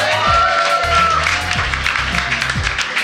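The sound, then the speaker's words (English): A live show audience cheers and applauds, a dense, steady wash of clapping and shouts lasting the whole three seconds, with a brief whistle-like tone early on and low rhythmic thumps underneath. “Give yourself a cheer.”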